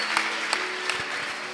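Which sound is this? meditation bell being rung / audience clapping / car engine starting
audience clapping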